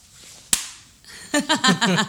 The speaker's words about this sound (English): For those of you who don't get the joke, I just clapped.